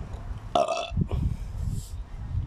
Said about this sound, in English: oh, I'm gonna burp again, I'm sorry.